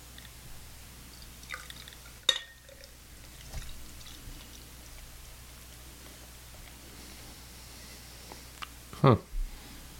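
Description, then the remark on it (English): A steady, soft rush of filtered beer poured from a big bottle into a Spiegelau IPA glass, with a few faint clinks and drips and a sharper knock near the end, with no one speaking. “Very clear pour, yeah, not very, hazy. Yeah. Well, this is a filtered beer.”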